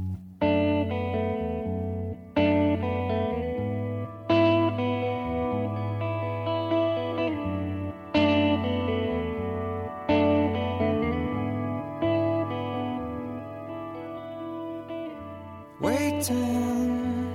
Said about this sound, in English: It was the first ever … song that I actually started humming later. Here is, off of 1994's …, ….